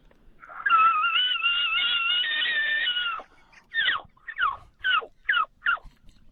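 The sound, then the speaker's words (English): A man pulled over on a highway imitates an elk bugle by voice, without a tube or horn: a long, high, wavering whistle-like call lasting a few seconds, then five short, sharp descending yelps in quick succession, loud. “That's like a cross between an elk and an angry bird, but I'll take it.”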